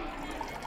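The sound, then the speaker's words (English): A short, steady pour of coffee into a cup, a soft continuous trickle at low volume, with no talking, made for a symbolic meal offered to deceased grandparents at the To Payo Siu De Shantang Columbarium. “Making a cup of coffee for the deceased and ensuring the chopsticks are ready.”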